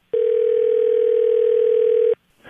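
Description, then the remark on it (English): A telephone ringback tone sounds once while a call is placed: a steady, clear electronic hum lasting about two seconds, then a brief silence and a faint rustle. “Just call him and check in and be like, hey, can we get together for drinks later or something?”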